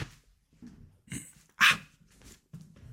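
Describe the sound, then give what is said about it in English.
A pet dog gives one sharp, loud bark, with a few softer huffs and low snuffling noises before and after, otherwise quiet. “My dog, can you believe that?”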